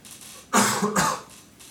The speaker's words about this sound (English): Sorry for the cough, guys. I got beat down last week by this big old F word. Last week I got beat down, guys, by the big old F word. You know, I'm talking about the flu. Yeah, I went into the doctor and they're like, oh, you got the flu.